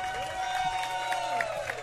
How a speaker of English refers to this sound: Would you give a big round of applause to Dante Fabro and Rocco Grimaldi?